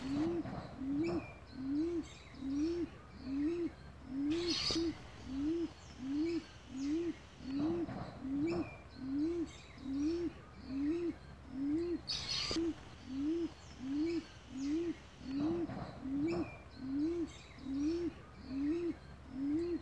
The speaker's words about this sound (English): Yeah, so the Torres Strait imperial pigeons, they actually migrate from New Guinea and come down to the top end of Australia. So... yeah, they're pretty spectacular and they got a funny noise that they make as well.